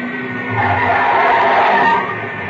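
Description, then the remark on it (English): Car tires skid on the airport road as another car comes in, a loud, sustained screech that swells in the middle and eases off toward the end, a harsh squeal over rumbling road noise, with no voices. “There's another car coming in.”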